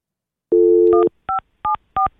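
A steady telephone dial tone hums for about half a second, then four short, evenly spaced touch-tone keypress beeps follow as someone phones a person once more, each a bright two-note chirp, with no voices.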